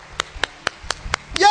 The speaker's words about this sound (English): And after you stood, put your hands together. Come on. Everybody. Come on. Everybody. Come on. Applaud those who got saved.